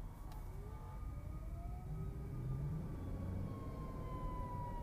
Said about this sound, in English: Is he turning? Okay, we good. Y'all, if y'all hear that, you know, anytime the ambulance be rolling around, you got to stop and figure out what to do, where he coming from, where the sound coming from. Is it coming from behind you?